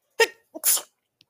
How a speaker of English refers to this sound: I have to sneeze.